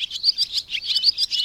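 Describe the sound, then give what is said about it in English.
A pair of swallows give alarm calls at a perceived threat to their nesting territory: a rapid, insistent series of sharp, high-pitched chirps repeating without pause, fairly loud, with no voices. “If a pair of swallows perceives a threat to their nesting territory, they sound the alarm.”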